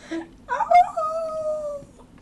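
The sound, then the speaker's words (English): A person imitates a dog for actor Tom Felton with one drawn-out, whining bark that slides down in pitch over about a second, loud, with faint background noise underneath. “Do you like it when I bark for you, Mr.”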